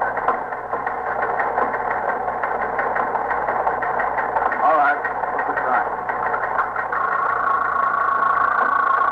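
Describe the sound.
A teletype machine in a police precinct office runs with a steady mechanical clatter, printing an alarm for a stolen car in quick repetitive bursts, with a voice speaking briefly over it in a muffled, old-radio tone.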